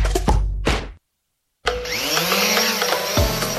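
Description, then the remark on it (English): A drone from Ghanaian innovators, used to capture aerial views that help cashew farmers monitor their crops, taking off: a couple of short clattery knocks, a moment of silence, then a loud, steady, high-pitched buzzing whine of spinning rotors whose tones waver slightly. No one speaks. “And up it goes. The drone that captures the views that help cashew farmers monitor their crops.”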